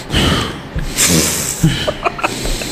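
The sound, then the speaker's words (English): A voice imitates a man's heavy breathing: a series of loud, rough, airy huffs and snorting inhales in an uneven rhythm, with no words spoken. “What he was just breathing fuck? Heavy, and I was like, all right, cool.”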